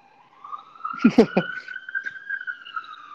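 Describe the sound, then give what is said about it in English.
An emergency vehicle siren wails steadily throughout, loud, its tone holding high and slowly shifting, while a voice speaks briefly over it near the start. “You really got a siren coming by right now.”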